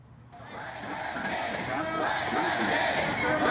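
A noisy crowd of New Yorkers protesting President Trump's travel ban at JFK Airport in January 2017 forms a dense, steady roar of many overlapping voices that swells louder over a few seconds, with no single speaker standing out.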